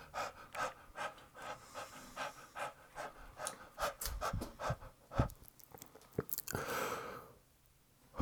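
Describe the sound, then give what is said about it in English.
Heavy, rapid panting from a person out jogging, a steady run of short breathy gasps, about two per second, ending in a longer rushing exhale before going quiet. “Is there a dog panting? I'm just out for a jog.”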